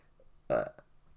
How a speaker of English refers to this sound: Good. Good for getting that out. That burp.